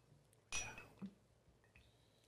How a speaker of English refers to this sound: Ice cube action. Put that back in there.